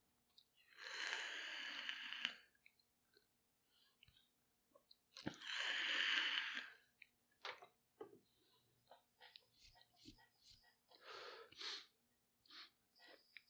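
Two long, airy breaths, a drawn-in inhale and then a slow exhale of vapor from a vape, followed by small clicks and soft mouth sounds. No one speaks.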